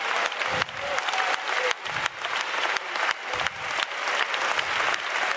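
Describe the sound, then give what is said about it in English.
An audience claps hands steadily to give Jesus praise, a dense, loud wash of applause with a few pulsing swells and brief dips, sustained throughout with no voices rising above it. “Oh, let's clap our hands and give Jesus praise.”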